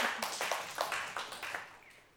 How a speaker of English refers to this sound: Yeah, you can give a clap for that.